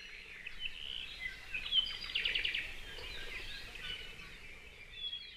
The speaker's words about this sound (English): From the mountains to the sea, Hawaii's birds can be heard in their native habitat. Take a moment to listen.